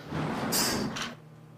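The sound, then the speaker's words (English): A sliding door glides shut with a rumbling, scraping rush and a brief hiss, then stops abruptly, leaving a low steady mechanical hum. Fairly loud, with no voices. “You scrape it, and you pull it, and it's just close enough that as the door shuts, it just shuts.”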